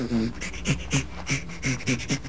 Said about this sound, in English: This particular recording has a panting chimpanzee laughter. Okay, well, here's a chimp laughing.